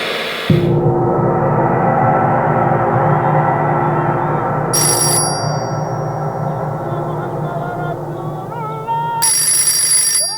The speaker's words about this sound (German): An einem Tag Ende Dezember klingelte in der afrikanischen Hafenstadt Tshelala ein Telefon, dessen Rufnummer geheim war, also nicht im Telefonbuch stand.